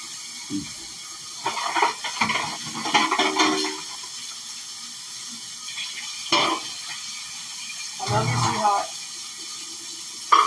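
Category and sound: household object, washing dishes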